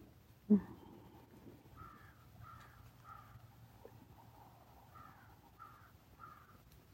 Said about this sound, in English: Crows, of course, always have a lot to say.